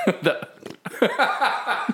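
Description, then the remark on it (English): A voice close to the microphone makes a string of wet, sputtering fart-like noises, a rapid series of short gurgling bursts over about two seconds. “Just farted in the microphone. That's what it sounded like. That's a wet one, dude.”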